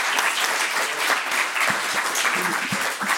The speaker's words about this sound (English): So I think at the end of that, we have to give a big round of applause to the audience.